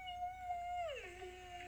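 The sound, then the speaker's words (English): A person imitates a whale call, holding a long, steady hum that slides down into a lower, drawn-out moan. The single call is moderately loud, with no talking. “Whale sound. Is that good?”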